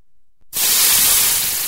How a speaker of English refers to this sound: Try to avoid burning the rest of my taste buds so I can actually tell you what it tastes like. Here, you know what? We may add some dramatic effect to this sipping sound.